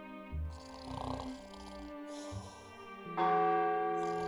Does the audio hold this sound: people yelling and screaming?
no